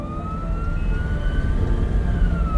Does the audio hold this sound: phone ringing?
no